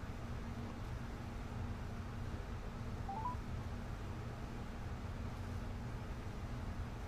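Quiet telephone dialing tones: a faint, steady low tone hums throughout, with a single brief beep near the middle, and no one speaking, as a host places a call through a Rodecaster.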